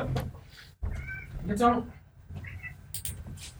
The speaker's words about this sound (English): Just silence as we listen to cats being moved. You just hear like a faint meow in the background, and that's it.